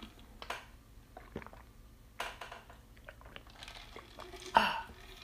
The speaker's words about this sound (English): That was three big gulps of ice-cold Arizona green tea with honey. I drink that every day and night.